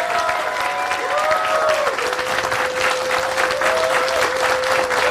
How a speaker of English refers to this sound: So round of applause for everybody coming out today.